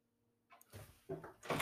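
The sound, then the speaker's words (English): A pet cat scratches at a door in a few short, rough bursts, scraping and rasping, with a quiet pause between strokes. “Every time I do a podcast, this cat of mine has to start scratching on the door.”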